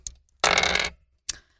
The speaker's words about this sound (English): Roll me percentile dice, please.